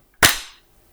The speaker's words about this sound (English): Are we clapping? Yeah. We're always clapping.